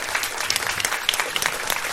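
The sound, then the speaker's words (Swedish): Steady applause from an audience applauding itself for raising 5,060 kronor for Cancerfonden that evening, a dense crackle of many hands clapping at once, fairly loud and continuous throughout with no voices on top. “Så ge själva en jättestor applåd.”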